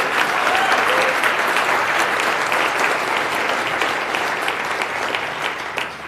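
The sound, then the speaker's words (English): Sustained, loud audience applause fills the whole stretch, a dense crackle of many hands clapping at an even level with a few sharper individual claps standing out, and no one talking over it. “I think we should give them a round of applause for that.”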